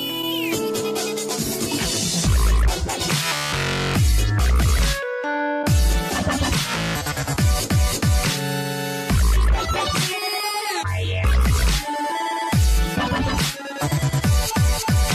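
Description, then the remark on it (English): The Nokia phone ringtone melody in the official dubstep version included with phones in 2012, with heavy wobbling bass, sharp synth stabs and pounding beats broken by brief drops into silence, playing on its own with no voices. “Except for when an official dubstep version was included with phones in 2012.”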